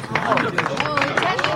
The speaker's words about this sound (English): That's a clap for the attendant.